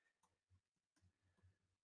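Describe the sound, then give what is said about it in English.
Faint keyboard typing as someone types in the title of a recording: a few scattered, irregular key clicks with soft low thumps, with no one talking. “I was just typing the title of the recording in as you were speaking, actually, because I realized I forgot to do it.”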